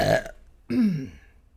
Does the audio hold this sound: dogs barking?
no